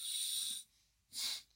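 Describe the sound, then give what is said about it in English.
Airy, hissing breaths drawn in through one nostril while the other is closed off, checking which nostril feels clearer and is more dominant: a long inhale, a pause, then a second shorter sniff and the start of a third, with no talking. “I think on the topic of nostril dominance, we can all check now which nostril is more dominant by just closing off one nostril and kind of breathing in and seeing which one feels a bit clearer than the other.”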